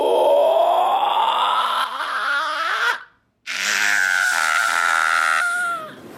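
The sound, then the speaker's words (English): A human voice imitates the horrifying screech of a changeling creature as its head elongates: two long, strained, rising wails with a raspy, harmonic-rich texture, loud and sustained, split by a brief silent pause. “And it lets out this horrifying screeching sound as its head kind of elongates.”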